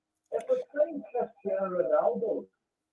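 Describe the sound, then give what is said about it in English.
A television plays in the background, its muffled voices running continuously for about two seconds at a low level with no clear words. “Just going to turn your telly down in the background because it's just interfering with the reverb there.”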